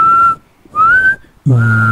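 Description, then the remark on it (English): Someone whistles two clear, sustained notes, the second gliding slightly upward, before a voice cuts in at the end. “I think most lipped creatures can whistle.”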